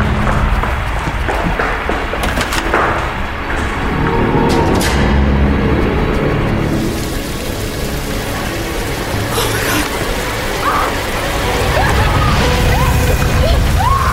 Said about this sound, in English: It's water, Gail.